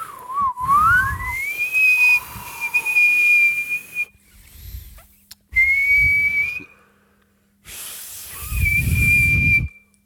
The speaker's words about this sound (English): We will have learnt whistling by then. I just got it. What? That was just regular whistling.